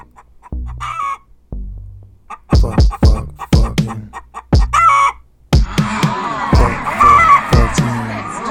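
A chicken clucks in short, sharp bursts at a steady pace, then breaks into a louder, sustained run of agitated squawking and crowing that fills the last few seconds.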